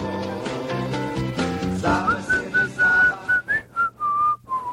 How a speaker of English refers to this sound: I'll let you whistle. I think I'm terrible at whistling. I think you're doing a good job. I feel like you can't whistle. Am I even whistling?